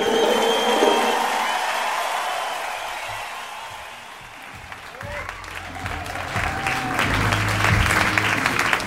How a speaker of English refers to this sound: Thank you for the polite applause.